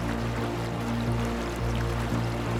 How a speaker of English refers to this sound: And when these aquifers are healthy, they bubble to the surface as springs.